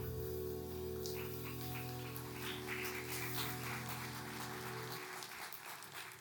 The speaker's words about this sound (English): I guess you can clap for the band playing that secular music.